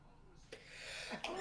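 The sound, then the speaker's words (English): A sneeze, with a quick noisy inhale building up to a sharp, explosive burst of breath at the end. No one speaks. “Gesundheit.”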